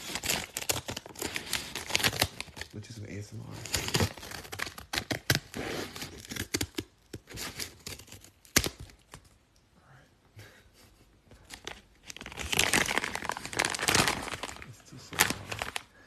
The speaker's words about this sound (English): Be careful with scissors, you guys. But I have some scissors here. I'm going to cut these open so they're not too loud.